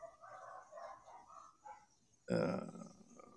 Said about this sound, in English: besides the dog barking in the background? They're always barking because they get mad with these freaking idiots.